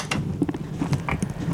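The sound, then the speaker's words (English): A pancake maker lid being opened before batter is poured into its wells: a run of light mechanical clicks and clatters over the pancake maker's low steady hum, with a couple of brighter metallic ticks along the way. “So, okay, we're gonna open the pancake maker.”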